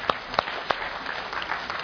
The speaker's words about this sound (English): Come and join me, folks. And you can applaud, yes.